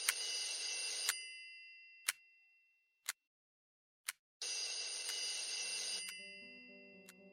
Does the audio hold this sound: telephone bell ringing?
yes